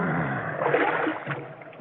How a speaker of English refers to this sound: To keep the field flooded, we must lift the water by the treadmill onto the field. We must keep the field flooded until October.